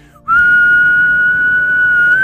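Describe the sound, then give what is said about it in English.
A man puts two fingers in his mouth and lets out a loud, shrill whistle that blasts out suddenly and holds one piercing, steady pitch for about two seconds, rising slightly at the end, dominant with no talking. “putting two fingers in his mouth, he let out the loudest whistle Jack had ever heard in his whole life”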